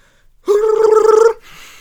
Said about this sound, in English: I just burped.